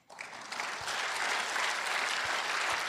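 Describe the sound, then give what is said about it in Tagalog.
An audience bursts into applause, rising quickly from quiet to a dense, steady roar of clapping that holds loud for the rest of the moment, with no voices standing out. “Lakasan niyo po yung palakpak.”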